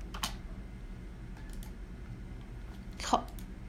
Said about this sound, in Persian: اجازه بدین یه چند تا کلیک کنم، یه جایی تو همین فایل گذاشتم.